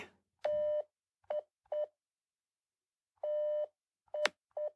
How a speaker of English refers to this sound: Iambic pentameter has those five beats, and dactylic hexameter has six beats, long, short, short. A dactyl in Morse code would be the letter D.